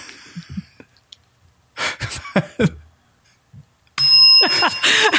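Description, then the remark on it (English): A bright bell rings out sharply with sustained ringing overtones, following a few soft breaths and murmured vocal sounds, the bell's tone lingering loudly near the end. “I guess if you rang the bell, I don't get to ask you if that's really what you want to have said just then.”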